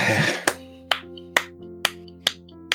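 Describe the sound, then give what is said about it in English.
Slow, deliberate hand claps, about six sharp smacks evenly spaced roughly half a second apart, ringing over a steady sustained tonal hum, with no one talking. “sorry, as if that clap were sarcastic, but please, yeah, I did.”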